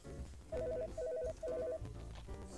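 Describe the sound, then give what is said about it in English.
An old flip phone rings with a call from the office: three short bursts of a bright, chirpy electronic tone, each a quick warbling run of beeps, fairly loud over low background noise. “Looks like the office is calling. So much for my sandwich. Good Lord, you still got that old flip phone?”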